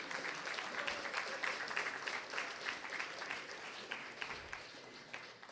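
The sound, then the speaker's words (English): An audience claps steadily to welcome the readers at a chapbook reading, a dense, even patter of many hands that holds fairly loud for several seconds before easing slightly toward the end. No voices break through. “So let's give all our readers a warm round of applause and welcome.”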